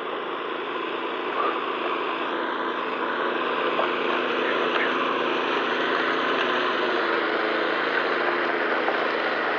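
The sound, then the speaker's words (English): A snowblower engine runs steadily, a constant buzzing drone with a rough, rattling edge that holds the same level from start to finish, with no pauses or changes in pitch. “Got a snowblower.”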